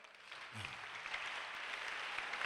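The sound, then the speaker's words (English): Sustained audience applause during a sermon, a dense rattle of many hands clapping at once, steady and fairly loud throughout with no voices standing out. “Oh, your hand clap can be better.”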